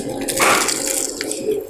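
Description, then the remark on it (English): A crisp, crackly bite into a cornflake-crusted fish taco with lime, a burst of crunching followed by softer wet, squishy chewing noises, with no one speaking. “That was an awesome crunch.”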